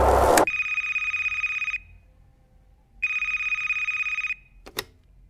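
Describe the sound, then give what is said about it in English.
A telephone next to a bed rings twice in a steady electronic trill, each ring lasting over a second with a pause between, loud, ending with a brief click or clatter. “The phone next to his bed is his other lifeline.”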